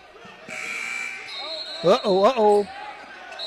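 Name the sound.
referee blowing whistle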